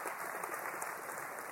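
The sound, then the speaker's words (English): A crowd claps steadily for a man called up from the audience, a dense, even wash of many hands applauding at a constant moderate level with no voices standing out. “Y'all give him a big round of applause.”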